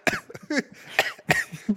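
A loud series of harsh coughs, four or five rough bursts in quick succession with short gaps between them and no speech.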